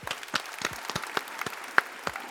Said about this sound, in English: But it is time to call it. That has been a show. Everybody, let's clap it out.